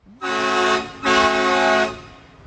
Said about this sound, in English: The audio picks up. And she just drives up in this truck. And it's supposed to be like this dramatic thing, but it's like there's no one there and there's no little noise.